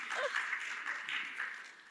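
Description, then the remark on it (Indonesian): An audience applauds in a steady, dense patter of many hands that runs the whole clip at a fairly soft, even level, with a faint murmur of voices mixed in. “Boleh kasih tepuk tangan buat kita semua.”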